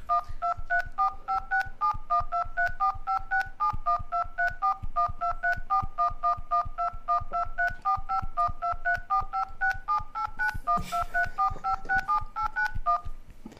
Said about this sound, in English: This is Shaun with his phone about to dial in numbers. I'm about to perform the song. This is one of the songs for the album, but it's just not really a song. It's more like an interlude-y thing, but it goes...